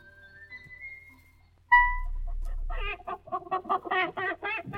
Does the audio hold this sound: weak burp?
no